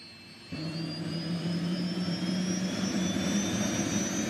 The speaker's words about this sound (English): So piloting a chopper like this is far from easy for those who've never been in one.